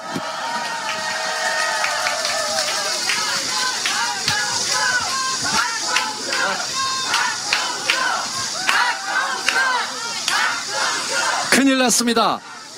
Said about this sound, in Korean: 박수 한번 쳐주십시오.